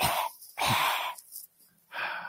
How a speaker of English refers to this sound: Take care of me. I'm coughing.